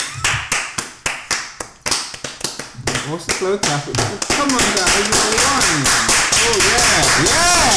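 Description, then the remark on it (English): A steady run of sharp hand claps, a slow clap for Streamcast's first anniversary, builds over a few seconds, then gives way to loud voices talking and whooping over continued clapping. “What's the slow clap?”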